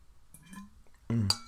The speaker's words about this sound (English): As I drink my water.